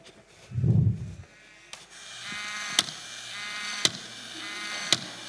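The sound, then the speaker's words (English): A 25-year-old toy calf gives one short, low, muffled moo, then a steady mechanical whirr follows, broken by sharp clicks about once a second. No one speaks. “Did you hear the moo? You did hear the moo. Well, it does moo.”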